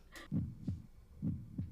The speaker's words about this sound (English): Is that a heart? That's a heartbeat.